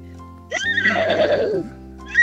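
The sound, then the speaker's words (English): A 14-year-old radio caller from Campbelltown imitates a horse's whinny, one loud, shaky, wavering neigh lasting about a second, with a brief breathy tail afterward. “It's like there's a palomino in the studio.”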